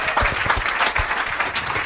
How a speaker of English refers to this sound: Also applaud the wait staff and the whole staff here.